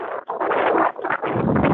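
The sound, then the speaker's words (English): Storm wind roars around a liveaboard boat in the Pacific Northwest in wintertime, in loud, rushing gusts, surging and briefly dropping off a couple of times before blasting back, with no voices. “As you can hear, I called Patty back at an exciting time, in the middle of this storm.”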